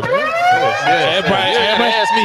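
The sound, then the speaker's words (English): A loud, steady siren wail holds a high tone for a couple of seconds while people talk over it. “Everybody getting the sirens around.”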